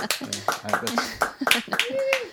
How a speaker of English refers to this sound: They're our live studio audience. That's right. A round of applause from a live studio.